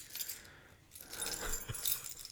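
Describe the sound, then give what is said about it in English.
Metal keys jangle and clink in a continuous, irregular rattle, with brighter bursts of jingling as a bottle opener is worked off a key ring. “While he's getting that off his keychain, I will talk about this a little bit.”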